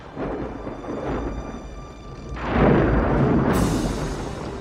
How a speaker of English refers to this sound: Unfortunately, a severe storm rolls in. Lightning and leftover gunpowder decimate the ship, knocking Eric into the sea unconscious.